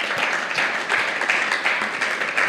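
An audience applauds steadily, many hands clapping at once in a dense, crackling wash that stays fairly loud and even throughout, with no one speaking over it.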